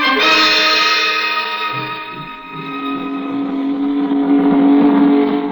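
A loud speedboat engine races steadily, its high, buzzing whine holding strong throughout with a slight dip partway through, continuous, with no voices.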